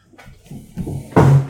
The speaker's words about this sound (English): Right, I'll just move two chairs so it sounds like we both stood up.